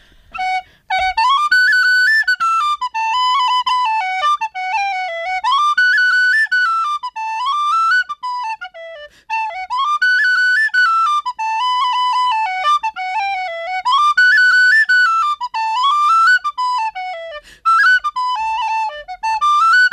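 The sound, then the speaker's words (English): A tin whistle plays a lively jig called The Cat's Meow, its bright, high notes running in quick, bouncing phrases with a steady lilting rhythm, loud and continuous with no voices. “I'll play a jig for you called The Cat's Meow.”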